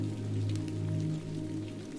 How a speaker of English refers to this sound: The windows look out onto Melody Lane as the rain continues to fall.